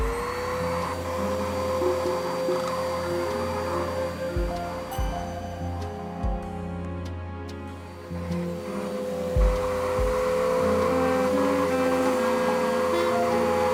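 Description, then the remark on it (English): A Henry vacuum cleaner runs steadily, its motor whining with a constant tone while the nozzle sucks up feathers and rattles over debris, the pitch dipping briefly as something gets pulled in. “Ugh, damn feathers are getting everywhere. I can't work like this. Where's his Hoover?”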